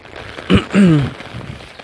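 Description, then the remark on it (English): Heavy rain pours down in a steady, dense hiss while someone walks outside in it, briefly broken by a short voiced exclamation from someone before the downpour carries on alone. “Oh, it's raining a lot.”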